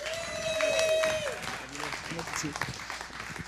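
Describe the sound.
A crowd claps and cheers to welcome a pastor, with a high whoop sliding downward, then the applause thins as a man starts speaking over the last scattered claps.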